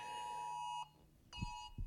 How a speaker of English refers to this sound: Forgot to turn my phone off. That's an Amber Alert.